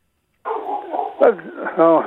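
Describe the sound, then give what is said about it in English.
A dog barks and yips in a few short bursts over a steady background hum, fairly loud, with a tonal, whiny edge to the later calls. “Oh, the dog's not going to go up.”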